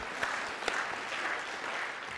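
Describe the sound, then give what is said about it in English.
An audience claps in a steady, dense patter of many hands, fairly soft and even throughout, with a couple of sharper claps standing out near the start. No one speaks. “I heard someone clap.”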